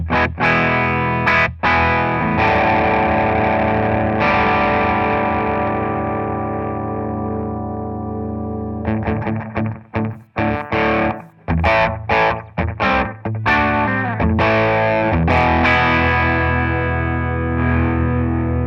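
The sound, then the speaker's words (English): Electric guitar played through straight distortion only, reverb turned off, with no added effects: long, ringing chords fading slowly, then a run of choppy, palm-muted chord stabs with sharp cutoffs. Loud and alone, with no voices. “Okay, so I'll start off with nothing, just the straight distortion. I'll turn off the reverb.”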